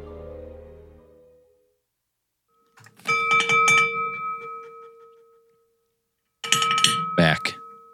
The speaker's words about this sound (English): About to jiggle the glass.